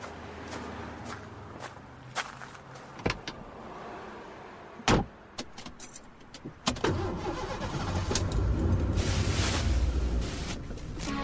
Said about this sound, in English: I'm going to cruise home in one of the promotional cars.